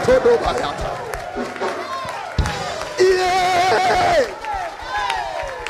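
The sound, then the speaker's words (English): A crowd of voices shouts and cries out together in a loud, continuous din, with overlapping raised voices rising and falling and a few sharper bursts. “Oh, if you are shouting, you are there.”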